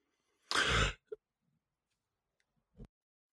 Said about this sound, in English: Sorry, I was just clearing my throat there. I was just getting emotional as you're working through all that.